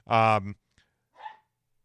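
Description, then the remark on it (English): A single loud dog bark rings out, followed a moment later by a fainter, shorter yelp-like sound; no one speaks. “The dog's bark.”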